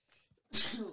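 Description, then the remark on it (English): A single loud sneeze: a soft, breathy inhale followed by a sudden sharp burst that trails off over about half a second. “Bless you.”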